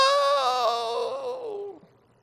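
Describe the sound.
A single voice imitates the wail of defeat, the shriek heard in deliverance ministry: a loud, sustained cry that starts high and bright, then slides steadily downward in pitch and fades out over about two seconds.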